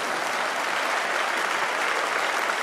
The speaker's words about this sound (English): That wasn't even a smattering of applause. That was almost like mocking applause, right?